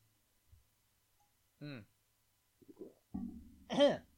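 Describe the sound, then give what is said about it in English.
A big gulp of a drink: a soft click, then a throaty swallow, followed by a few wet gulping sounds that end in a loud, rising voiced exhale. “Huge gulp.”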